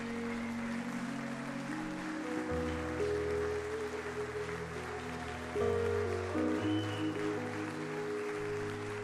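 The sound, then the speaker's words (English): A standing church audience claps steadily in a hand clap of praise to Jesus, a dense wash of hand claps over sustained keyboard chords that shift pitch every few seconds, with no voices rising above it. “Come on, can we stand and give Jesus a hand clap of praise?”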